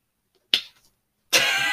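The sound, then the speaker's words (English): A single sharp slap of a hand going straight over a face cracks out after a moment of silence and fades quickly, followed by a sustained, rough rustling hiss that runs to the end. No one speaks. “the hand slap.”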